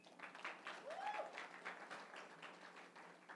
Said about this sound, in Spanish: Denle un aplauso.